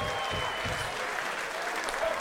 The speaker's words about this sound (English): Hey, give a round of applause for your fucking selves. Make some noise.